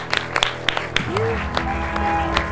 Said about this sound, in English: Well, thank you so much for all those suggestions. Let's get a round of applause for those.